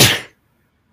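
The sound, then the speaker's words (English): A single sharp sneeze bursts out, a brief breathy blast that cuts off after a fraction of a second, followed by near silence. “Bless you.”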